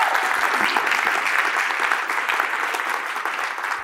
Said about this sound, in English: Like, we need to give them a huge round of applause.